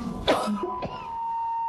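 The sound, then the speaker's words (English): A lecturer giving a medical talk gives a muffled cough followed moments later by a short throat clearing, two quick bursts with no talking, over a faint steady electronic hum. “I'm sorry, I've been trying not to cough the entire time.”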